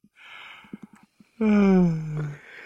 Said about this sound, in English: Yawns are very contagious.